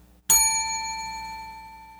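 household object, small bell being rung

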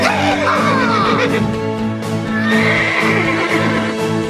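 animal, horse neighing

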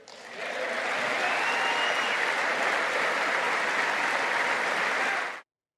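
crowd, applause

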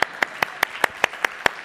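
crowd, audience clapping

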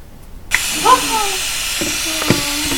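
household object, spray bottle spraying water

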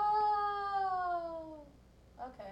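animal, cat meowing

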